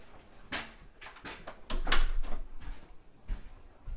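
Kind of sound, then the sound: household object, door closing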